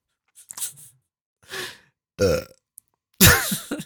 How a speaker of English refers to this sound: Leave the burps in.